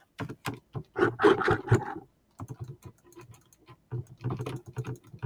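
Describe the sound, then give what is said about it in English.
Rapid, clattering keystrokes on a computer keyboard, coming in busy bursts with brief pauses between them, fairly loud with no voices over it. “Okay, so keys don't do anything.”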